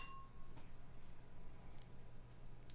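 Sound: beer glasses clinking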